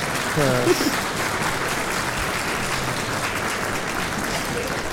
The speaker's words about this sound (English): I do want to give a round of applause. Thank you. I do want to give you, let me make sure that applause comes out nice and crisp.